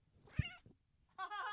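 A cat named Kevin meows twice, a short cry followed after a brief pause by a longer, louder, drawn-out meow, with a soft thump near the start.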